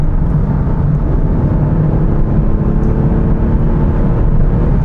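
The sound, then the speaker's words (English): A car engine revving hard under full throttle, a loud, steady low roar with a rising harmonic whine as it pulls, and no voices over it. “What a lovely noise this car makes when you floor it.”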